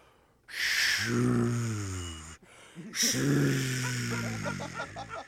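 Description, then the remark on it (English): A person's voice imitates an ocean sound, a new sound a city is testing, with two long, loud, breathy whooshes, each a rough hiss over a low hum that swells and then fades, with a brief pause between them. “Yeah, more of like an ocean sound, like a...”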